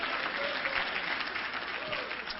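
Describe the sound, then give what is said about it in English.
A church audience applauds during a sermon, giving the Lord a hand clap, with steady, dense hand clapping that fills the whole clip at an even volume, with faint voices mixed into the clatter. “Give the Lord a hand clap, somebody.”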